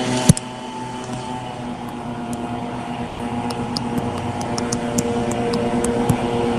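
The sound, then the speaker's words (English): A steady, droning engine roar of race cars on their warm-up lap at Circuit of the Americas, heading towards the back straightaway, holding fairly constant for several seconds, with faint ticking clicks on top and no talking. “I can hear the cars, but I don't hear Slip Tim.”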